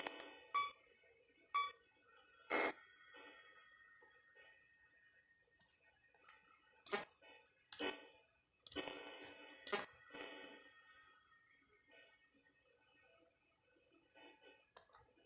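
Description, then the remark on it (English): Heavy video-game footsteps thud at a steady pace, about one per second: three sharp hits, a pause, then four more, with a faint hum between and no talking. “Okay, that was a lot of footsteps.”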